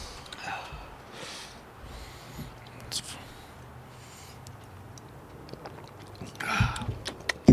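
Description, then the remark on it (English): Sipping a Corpse Reviver No. 2 cocktail from a glass: soft slurps and breathy intakes, a few small clicks, and a louder gulp and exhale near the end, otherwise quiet. “Shall we have a sip?”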